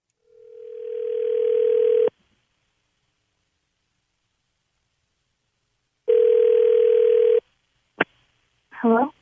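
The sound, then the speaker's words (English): A phone line rings out with two long, steady ringback tones separated by a pause of silence as a call is placed to a contest winner, followed by a click as the call connects and a voice briefly answers. “Let's see if we can get her on the phone here.”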